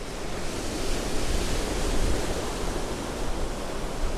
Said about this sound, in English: As gray skies drove winds that churned the sea around them, Zion sought out Queen Cyrena to learn more about her visions of the God King.